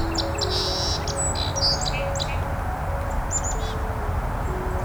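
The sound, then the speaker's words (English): A Carolina wren sings bursts of quick, repeated whistled phrases from the other side of a creek, not far from an expressway, over a steady rushing background of traffic or flowing water. “The Carolina wren.”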